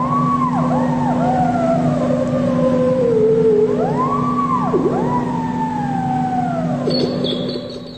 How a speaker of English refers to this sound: Brandon, can you find what a theremin sounds like? How do you even spell that theremin? Like, it's that, like theraflu. It's how they make the noise in old scary movies.